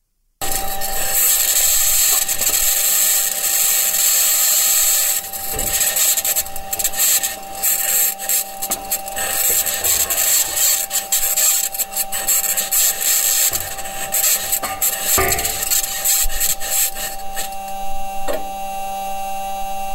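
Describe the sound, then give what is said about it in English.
NASA-released audio of a Mars rover rolling across the rocky surface of Mars: a steady, harsh grinding and scraping with high metallic squeals, creaks and occasional clanks, loud and continuous for the whole stretch, with no voices. “But anyway, NASA released some audio of what this thing sounds like as it's rolling around the surface of Mars.”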